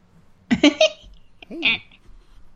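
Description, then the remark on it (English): A baby makes little grunting noises: three quick, clipped bursts followed by a longer, wavering vocal sound, with quiet in between and no one else speaking. “Yeah, a lot of nice little grunt sounds.”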